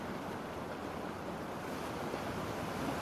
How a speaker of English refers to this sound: See the sun glistening off the water. The waves splashing against the shore.